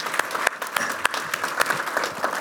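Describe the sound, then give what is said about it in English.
A crowd claps steadily, dense overlapping handclaps with a few sharper individual claps standing out, sustained throughout the short stretch with no talking. “And I'm gonna stop and applause that right now.”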